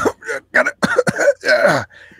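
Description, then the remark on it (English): A voice imitates a man's persistent, harsh, hacking cough in a rapid series of about six or seven bursts, loud, tapering off into a faint wheezy breath at the end. “And it was the kind of cough where he couldn't get through a sentence.”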